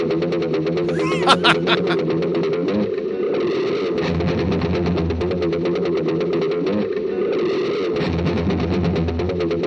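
A heavily distorted electric guitar effect sputters and churns in steady pulses, resembling a car engine cranking and trying to turn over, loud with a few sharp bursts near the start.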